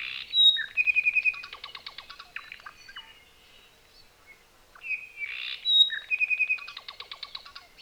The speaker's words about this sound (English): Or Hawaii volcanoes, and there's, you know, the remnants of Hawaiian honey eaters. Iivi and apapanes and these birds that exist nowhere else outside of the Hawaiian Islands.